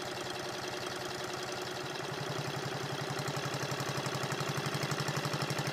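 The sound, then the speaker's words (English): A small engine runs with hydrogen added, its rapid, regular firing pulses growing louder and more pronounced partway through, like a steady stream of sharp little explosions over a low hum. “Now listen to the difference in sound when I add hydrogen.”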